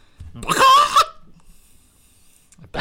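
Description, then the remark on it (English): A person makes one brief, loud squawk in imitation of a chicken, followed by a quiet pause before another voice starts at the very end. “Do your best chicken sound.”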